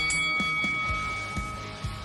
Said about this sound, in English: Now go back to the corner and come out fighting at the bell.